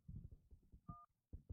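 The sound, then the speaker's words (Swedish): Two short dual-tone telephone keypad beeps sound as a personal identity number is punched in on Bahnhof's automated phone line in Sweden, the second after a brief pause, heard over low muffled speech-like rumble. “För snabbare hjälp så knappa in ditt personnummer. Avsluta med fyrkant.”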